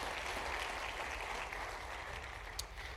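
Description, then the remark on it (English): A church audience in Woodville claps together as a clap offering of praise to God, a steady, dense wash of applause that holds at an even level for the full three seconds, with no voices rising above it. “Come on, Woodville, give another clap offering of praise to our Lord God.”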